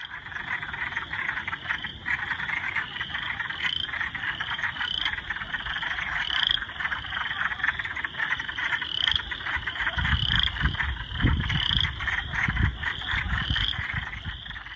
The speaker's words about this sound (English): Right now, you're going to listen to the sound of wood frogs.